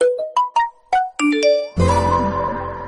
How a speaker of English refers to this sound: If you can't tell what that is the notification sounds of other devices, something Nintendo had not had to deal with.